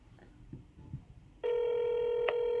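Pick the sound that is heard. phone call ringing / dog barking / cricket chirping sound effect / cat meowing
phone call ringing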